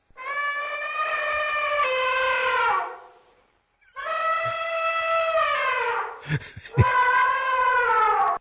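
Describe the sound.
A voice imitates Allameh Helli roaring with joy: a loud, sustained roar-like wail in two long bursts, the tone slowly sliding, with a brief rough crackle partway through the second one.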